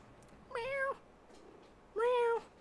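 A cat meows twice, about a second and a half apart, each cry short, drawn-out and clear, the second a little louder, with no one talking over it.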